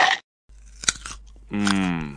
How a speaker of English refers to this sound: …, you're chewing into the microphone again